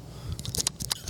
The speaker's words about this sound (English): Oh, my God. I wish you would quit chewing on that ice.